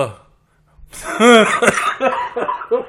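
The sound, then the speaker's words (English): After a brief pause, a strained, groaning vocal sound leads into a short run of three or so harsh coughs, fairly loud, each one clipped and separated by short gaps. “I'm just going to cough.”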